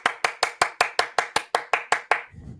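A single person claps about eleven times in a quick, steady rhythm, each clap sharp, applauding because the Avs scored, then the clapping stops. No one speaks.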